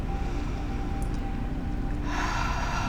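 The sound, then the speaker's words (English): A deep breath with no talking: a long, steady inhale, then a brighter, breathy exhale rushing out near the end, with a low rumble underneath throughout. “Deep breath in, and just breathing everything out.”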